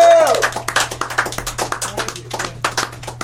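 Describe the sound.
A small audience applauds steadily, many overlapping claps sounding close and fairly loud across the whole stretch, with a brief voiced cheer at the very start.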